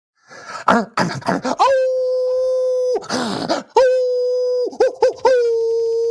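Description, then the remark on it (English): Loud wolf howls, a Red Wolf sound effect for the Arkansas State Red Wolves: two long, steady notes that swoop up and hold, separated by bursts of rough, breathy yelps and yips. “What's your Red Wolf sound effect?”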